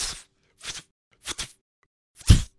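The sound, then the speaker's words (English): Cap'n Crunch cereal is poured into a capsule in four short, crunchy, rattling bursts separated by brief pauses. The last pour is the loudest and fullest. No one speaks. “All right, we'll just fill the capsule with Cap'n Crunch. Fill it up.”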